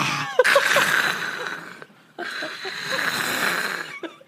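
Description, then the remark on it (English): A voice imitates a dragon with two long, raspy, hissing roars, each nearly two seconds, separated by a brief pause. The breathy growl sounds harsh and strained, almost like coughing up a hairball. “Why is it a cat every time a dragon sound comes out of my mouth?”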